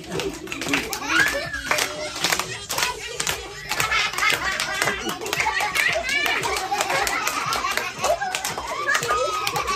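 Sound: audience clapping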